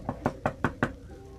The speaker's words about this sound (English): As you guys are standing there, you do hear a knock on the door.